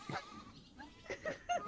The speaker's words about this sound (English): Okay. It's a fainting goat.